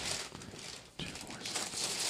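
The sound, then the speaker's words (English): Christmas gift wrapping paper being ripped open, a loud, noisy tearing and crinkling that dips briefly halfway through before a second burst of ripping. “All right, Joe, you're opening your next one. This Black Panther paper right here.”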